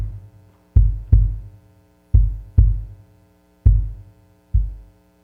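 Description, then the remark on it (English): A slow heartbeat thumps out three deep lub-dub pairs, evenly spaced, with a low steady hum underneath and no voices. “on Friday, Jesus' heartbeat went from this to this.”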